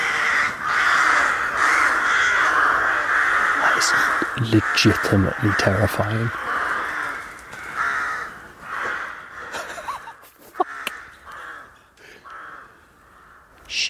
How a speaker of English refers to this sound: Tell you what, at night time in the forest, fucking hell, there's so many crows in here.